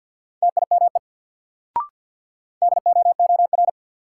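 Rapid Morse code beeps at 50 words per minute, part of a new-word drill, at a steady mid pitch spell out a word in fast clusters of dots and dashes, broken by a single sharp click, then another quick burst of tones follows.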